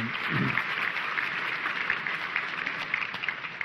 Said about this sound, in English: One more round of applause for Shane, if we can.